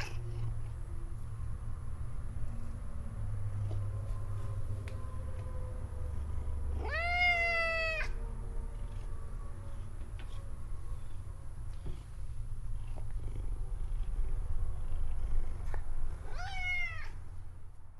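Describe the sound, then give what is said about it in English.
A cat meows twice, about ten seconds apart, each a drawn-out rising-and-falling cry, over a steady low purring rumble that runs throughout. No one speaks. “I have to pet this cat.”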